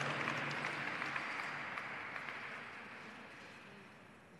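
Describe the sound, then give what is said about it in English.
A crowd in San Francisco breaks into sustained applause for distinguished individuals and their accomplishments, a dense wash of many hands clapping that stays steady and then slowly fades over a few seconds. No voices stand out. “So one more round of applause for our distinguished individuals and their accomplishments and impact here in the beautiful city of San Francisco.”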